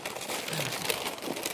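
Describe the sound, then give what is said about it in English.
Brown paper wrapping is pulled and torn off a parcel, a steady rustle and crinkle of stiff paper lasting a moment, with no voices. “And that brown paper reminds us of that. Another layer. What have we got under here?”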